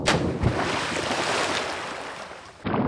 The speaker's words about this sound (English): Yeah, get that anchor splashing out there